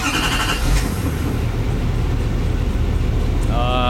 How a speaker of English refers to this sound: Duramax. It's a Duramax. Yeah, and I think it's a newer one. It's a newer one because for sure. Because it's super quiet, and that the starter is like... Really that, fast. Yeah. And it does not sound deleted.